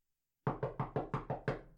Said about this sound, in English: So Ricky, he sits down for an interview with Baba Wawa, and Baba, she had the audacity to knock on that closet door.